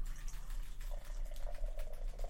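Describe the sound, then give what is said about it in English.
A light, double-malted, lager-coloured beer pours steadily into a glass for a couple of seconds, a soft continuous gurgling splash with a faint rising fill tone, fairly quiet, with no talking. “I'm going to pour.”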